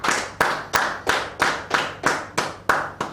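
Applause to thank a woman who put a lot of work into the event, in a steady, even rhythm: about ten sharp, bright claps, roughly three per second, each ringing briefly before the next. No one speaks.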